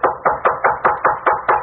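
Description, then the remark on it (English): Someone raps on a door in a quick, steady series of about eight loud knocks, evenly spaced, with no voices. “I can't open the door, but come in if you like.”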